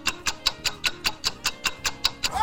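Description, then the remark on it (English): A radio quiz show countdown timer ticks quickly and steadily while a contestant tries to answer, about a dozen crisp, bright clicks roughly five per second, with no voices, and a higher tone begins to sweep in right at the end. “I'll give you the timer anyway in case something pops into your head.”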